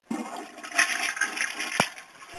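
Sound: toilet flushing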